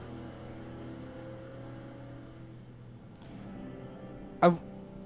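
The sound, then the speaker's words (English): A car cruises at steady speed on a highway with no other cars, its low engine and road hum droning continuously, broken by one brief sharp knock near the end. “You can follow at regular speed. Yeah. Because there's not a single other car on the highway.”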